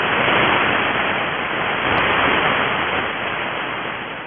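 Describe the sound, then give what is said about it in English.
Jupiter radio L-bursts received on a shortwave radio: a dense, hissing wash of radio static that swells and fades gently, like waves rolling in, steady and loud throughout with no voices. “2 types are common: long, or L, bursts that sound like waves crashing on a beach.”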